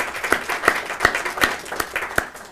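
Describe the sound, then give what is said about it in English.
An audience gives a round of applause for an administrative assistant, a dense patter of many hands with a few sharper, louder claps standing out at a steady pace over about two and a half seconds. “And last, I'd like everyone, if we could give a round of applause”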